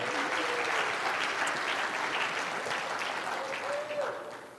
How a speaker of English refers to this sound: Ladies and gentlemen, a nice round of applause for the Black Widow!